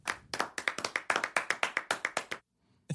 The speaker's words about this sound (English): Is that a sad clap? Yeah, that's a little clap.